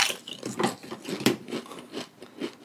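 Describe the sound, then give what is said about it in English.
Potato chips being crunched and chewed, with a run of crisp, crackly bursts repeating every half second or so, fairly loud, and no one talking. “This, I have chips sitting in front of me for this reason, ladies and gentlemen.”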